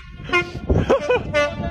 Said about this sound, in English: I love this video where you just like hear his like gleeful laughter at all the different noises that this train makes. And he's like doing a counter of like the like multiple kinds of weird tones that the train makes.